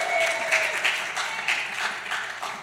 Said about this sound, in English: Hey, let me get a big cheer from the … kids before you guys leave.